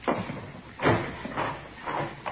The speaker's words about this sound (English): Here, I'll get the door.